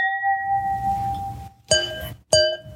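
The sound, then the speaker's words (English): Wine glasses clink together three times in a toast, each strike leaving a bright, bell-like ring; the first tone lingers before two sharper clinks follow in quick succession. “Well, salud, my friend. Salud. You got me drinking wine.”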